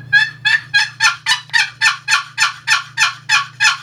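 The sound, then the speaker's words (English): A box call imitates an excited turkey hen's yelp, the call used in spring: about a dozen quick, raspy notes in a steady, fast rhythm, loud. A faint low hum sits underneath. “I'm going to demonstrate a hen yelp”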